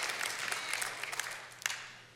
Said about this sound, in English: You ought to clap at that one. You ought to really stand on that one.